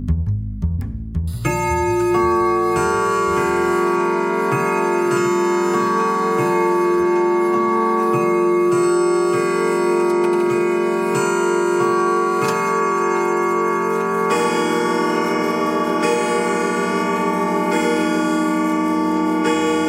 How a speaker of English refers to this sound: So, turn out your lights, draw the shades, wrap up in your favorite blanket by the speaker, and listen for the 12 bells while we bring you tonight's outstanding topic.